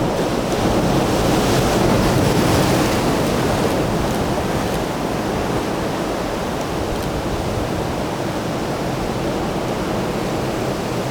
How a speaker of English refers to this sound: I don't think I'll get swept out to sea, but I might get wet. Here we go. Right, this is it. More waves.